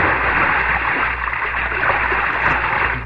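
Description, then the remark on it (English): Water splashes and churns loudly and steadily as someone jumps from a boat into a river after a girl who went overboard and thrashes about, with no voices heard. “That girl that was standing by the railing. I'm going in after her.”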